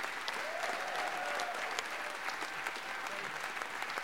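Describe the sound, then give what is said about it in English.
Steady, sustained clapping from a large crowd for the winner of the 2019 Golden Blazer Award fills the whole stretch, dense and even in loudness with no pauses, a few faint voices mixed underneath. “And can we have one more huge round of applause for an inspiration for me and I think for millions of others across America, the winner, and we are genuinely honored to be able to say this, of the 2019 Golden Blazer, a great friend of ours”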